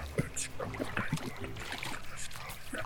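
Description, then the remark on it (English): Water sloshes and splashes in uneven bursts as paddles stroke across warm sewer water with a strong current, fairly steady, with voices murmuring underneath. “Ew, let's hurry and paddle across. The current is quite strong.”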